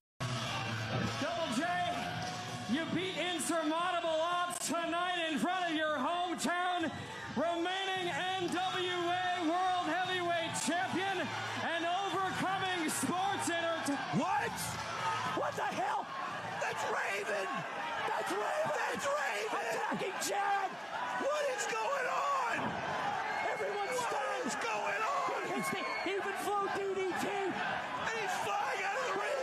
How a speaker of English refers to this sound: So there you go. Cool little moment. You can hear the crowd chanting Raven. It's a big moment, especially for a young company.